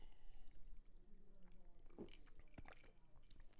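Beer is poured and then chugged, with steady wet liquid sounds and a few sharp gulps and clicks over a few seconds.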